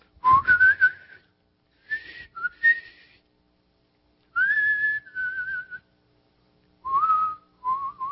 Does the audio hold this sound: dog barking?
no